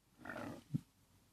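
A stomach growls in a low, gurgling rumble that swells for about half a second, then ends in a short, deeper gulp. Quiet overall, with no talking.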